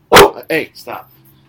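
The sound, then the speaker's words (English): A dog lets out three quick barks at the postman who just showed up, the first sharp and loud, the next two shorter and more tonal, then a faint low hum lingers. “The postman just showed up. Hang on one second. I'm sorry. Dog attack.”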